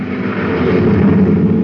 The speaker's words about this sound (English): Wow, that guy drives like a maniac. Did you see him whiz past us? It's a maintenance truck.